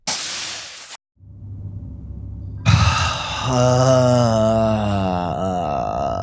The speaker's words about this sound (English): Sorry, that's not an emotional expression. Are you okay? I'm totally fine. Breathing outwards.